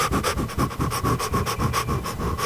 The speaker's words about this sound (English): But here it is, it's the process of releasing your inner fire. It's focused on deep and rhythmic inhalation and exhalations. It's called controlled hyperventilation or power breathing.